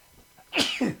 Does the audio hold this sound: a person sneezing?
yes